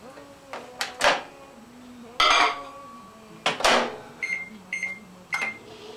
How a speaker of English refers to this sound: And I have a microwave type jar and have it melted, and I have to have it cooled up. So this is why I'm doing the very first thing. And I'm going to put it in my microwave for about 5 seconds.